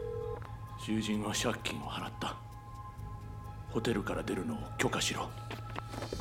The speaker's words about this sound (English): Oberlin dialed the number Tanaka instructed and held the phone to the gangster's ear.